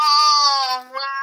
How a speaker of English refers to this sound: Well, if you hear a crash and I run to open the door, that's because our cat has decided she wishes to enter.